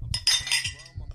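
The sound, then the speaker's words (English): Glasses clink together in a quick toast, a bright ringing chime that lingers briefly with a faint hum underneath. “All right, cheers, man. Get this clink going.”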